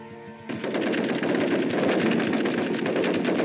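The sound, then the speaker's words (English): A short steady harmonic tone gives way after half a second to loud, sustained machine gun fire, a dense rattling stream of rapid shots that continues without pause to the end. “They were just looking for an excuse to use the machine guns.”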